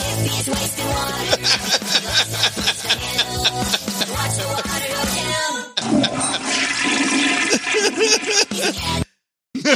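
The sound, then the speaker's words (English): A toilet flushes loudly, water rushing and gurgling through the bowl in a steady surge before cutting off abruptly near the end. No one speaks. “Flushing the toilet.”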